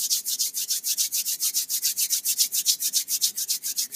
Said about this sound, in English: Now quickly rub your hands together again.